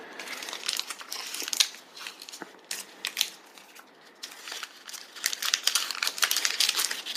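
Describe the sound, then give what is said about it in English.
Crackly crinkling of the plastic packaging of a new crunchy cookie snack being handled and pulled open, with irregular bursts of sharp rustles continuing for several seconds and no talking. “All right, I'm getting mine out because it's big.”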